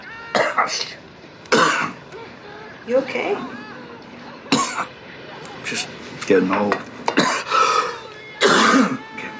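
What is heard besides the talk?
coughing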